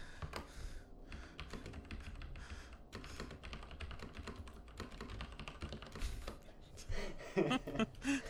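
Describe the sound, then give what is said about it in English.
Rapid, continuous clacking of keys on a computer keyboard, fairly loud, with a brief tonal hum near the end. “That keyboard.”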